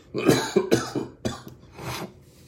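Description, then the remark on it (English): A loud fit of coughing: several harsh coughs in quick succession, then a pause and a final rougher cough trailing off, with no talking. “Excuse me while I cough.”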